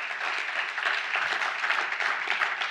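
A church audience at High Point Church applauds God, a dense wash of many hands clapping at an even, sustained loudness with no talking over it.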